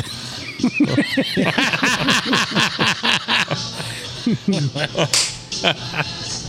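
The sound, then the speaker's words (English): A sharp, crisp hand slap of a high five rings out once, loud, amid a stretch of lively voices and laughter. “That's a quality high five.”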